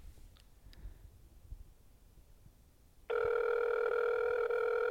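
A few faint clicks, then a loud, steady phone ringback tone starts and hums continuously through the last couple of seconds, clear with no talking.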